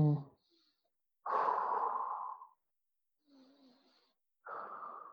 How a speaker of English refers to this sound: Again, do the same thing. Breathe in, hold, breathe out. So breathe in through the right, breathe out through the left. When you're breathing in, breathe in through your stomach. Get the air all the way down.